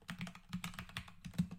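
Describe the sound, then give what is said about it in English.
Rapid typing on a computer keyboard as the name Rasheem Green is typed into Google, a quick flurry of sharp plastic key clicks at an uneven rhythm over about a second and a half, with no voices. “I type in his name.”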